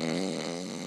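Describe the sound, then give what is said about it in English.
A voice imitates a huge, raspy snoring inhale, one steady rough drawn-in breath lasting under a second, fairly loud, with no other sounds around it. “And then, like, the inhale, the inhale was all snoring, just giant, like a.”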